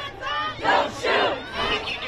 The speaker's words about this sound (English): They chanted, they marched, they yelled at the cops, they held up signs reading Black Lives Matter.